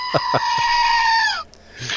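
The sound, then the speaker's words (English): A screaming goat novelty toy lets out one loud, shrill, sustained bleat-like scream lasting over a second, trailing off at the end, with a few soft clicks underneath and a brief rustle afterward. “So one resolution I have is, instead of getting visibly frustrated in meetings on Zoom, I'm just going to sit here and make use of my screaming goat.”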